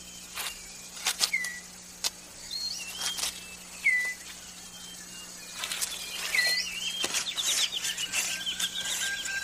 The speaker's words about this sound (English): That leaves the male six-plumed bird of paradise with time to concentrate on other matters, like tidying up his display area.